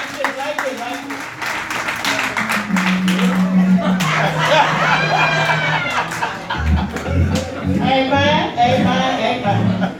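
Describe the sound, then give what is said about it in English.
A church audience gives the Lord a hand clap of praise, a dense, sustained patter of many hands lasting throughout, with voices calling out and cheering over the applause. “Can we give the Lord a hand clap of praise, please?”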